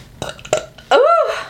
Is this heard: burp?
yes